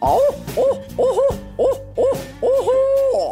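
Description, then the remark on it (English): A person's voice imitating a barred owl's rhythmic hooting: about six quick, rising-and-falling hoots in a steady cadence, ending with a longer drawn-out call. It is loud, with no talking. “So this is the hoot of a barred owl.”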